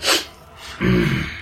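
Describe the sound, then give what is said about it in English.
A quick, sharp nasal sniff snaps out, followed after a brief pause by a longer, breathy vocal huff, as if a voice were imitating a fighter's dismissive sniff. “No witty comeback, just the boxer like sniff and shrug.”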